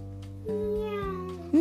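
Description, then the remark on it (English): A human voice imitates a cat's meow with a couple of drawn-out, low, nasal meows in close succession, ending on a louder, rising cry, heard alone. “Oh, you're a cat. I don't know, guys. We might have a problem here. There is a cat next to me.”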